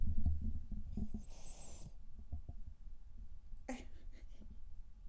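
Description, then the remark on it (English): A pet named Cleo lets out a single raspy snore, a brief breathy rumble against a low, steady background of soft thumping and murmuring noise. “We only got one snore out of her.”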